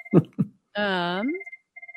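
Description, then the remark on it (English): A phone rings with a bright electronic ringtone, a sustained warbling tone followed by short repeated beeps, after a couple of brief vocal sounds at the start. “Phone. We can cut it out.”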